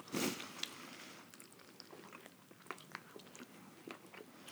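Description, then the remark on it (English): Wet chewing of beef jerky by people, with an initial bite followed by irregular smacking and crunching sounds, no talking. “Maybe we should just take a spoon and taste it so people don't have to listen to us chew like this.”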